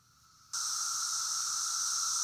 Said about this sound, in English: I'm going to give you 6 seconds of cicadas because I'm not sure you can take 10 seconds. So I'm going to give you 6 seconds and let's just listen and look at the cicadas.